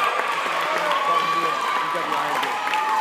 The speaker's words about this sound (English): Let's have a round of applause for her.